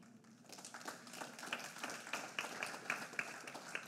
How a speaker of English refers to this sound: By the way, I'm so thankful for you to have a church that applauds for these things.